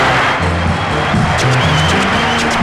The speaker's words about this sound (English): And I see a very large crowd coming up to the side now. And it is the Prince, dressed in crimson red, and all the crowd is shouting